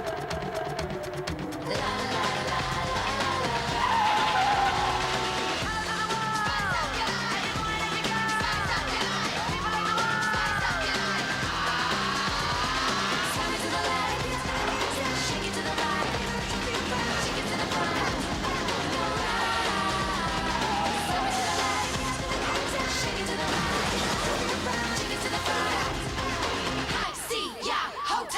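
A pop song plays loudly and continuously, buried under a dense wash of crashing and banging, with shouting, crowd-like voices mixed in, before cutting off abruptly near the end.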